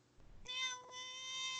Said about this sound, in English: That's Austin's cat for you. Yep. Right there in the fucking mic.